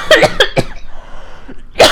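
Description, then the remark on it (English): A loud fit of harsh, rasping coughs: three or four quick bursts in a row, a short lull, then one more forceful cough at the end. No talking. “Oh, you can cut out that cough.”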